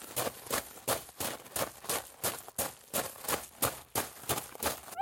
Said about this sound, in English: Hurried footsteps on dirt.